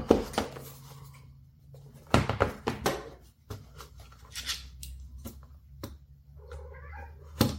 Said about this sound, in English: Excuse the kitties. They want to be in the video, I guess.